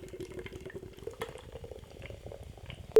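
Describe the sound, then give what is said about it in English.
BrewDog Pink IPA glugs from a can into a glass in a kitchen with a steady, bubbling liquid rush and fizzing, ending in a sudden sharp clunk. “Let's get it open into a glass and see what we got.”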